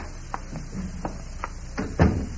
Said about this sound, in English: As the door opens and Barnes steps out.